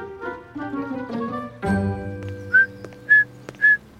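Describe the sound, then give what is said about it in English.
Someone whistles an imitation of bird song, ending in three short, bright upward chirps evenly spaced, with a soft tonal music bed playing underneath. “Perfect time for a little bird song.”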